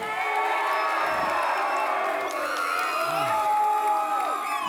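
A crowd cheers and whoops loudly for several seconds, voting by applause and cheers for the winner of a fight, many voices rising and falling in a dense, continuous roar with scattered shouts over the top.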